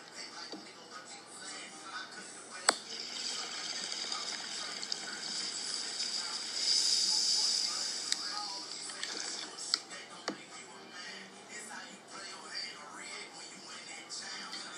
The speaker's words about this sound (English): bong tokes. Cheers, you stoners. If you guys are blazing in the late night, you already know what's up, man.